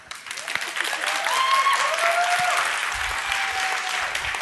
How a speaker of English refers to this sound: And they're kind of like, whoa, look at these people, they're praising God. And they even like clap their hands. Like they can, like, can you?